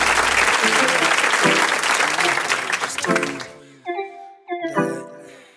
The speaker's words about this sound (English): I think I should give him some claps.